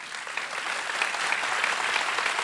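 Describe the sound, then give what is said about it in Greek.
An audience claps steadily, a dense wash of overlapping handclaps that holds at an even level throughout, with no voices standing out. “Γιατί χειροκροτάνε.”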